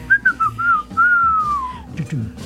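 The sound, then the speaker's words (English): A person whistles a short melodic phrase, the pitch gliding and dipping before trailing off, with some low background murmur underneath. “I can whistle for a second, but then it kind of fades out.”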